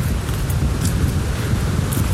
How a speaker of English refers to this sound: Wow, it's really windy. This might be bad for the cast.